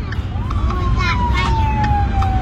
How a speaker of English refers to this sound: As they drive, you can hear the sirens all around.